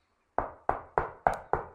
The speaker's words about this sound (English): Behold, I stand at the door of the church and continually knock.